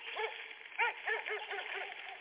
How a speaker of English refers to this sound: The other three deputies were down below, closer to the house, when the dog starts barking. I was hoping he would stop barking, but the dog gets more intense as barking.